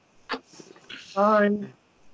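A small Pomeranian dog named Oliver gives a short sniff, then a brief whimpering whine that rises and holds for a moment before trailing off, with faint background noise between.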